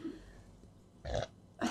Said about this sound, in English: I'm drinking soda, so I'm gonna be burping throughout this entire podcast.